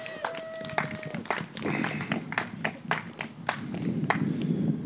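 A room of people clapping steadily for about five seconds, sharp overlapping claps forming a dense, even wash of applause, with a faint tone and murmuring voices at the start.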